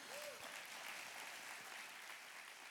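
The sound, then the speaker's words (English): A church audience claps hands in a dense, sustained burst of applause, steady and fairly loud throughout with no clear individual beats, and no voices standing out above it. “Come on, clap your hands if you clap.”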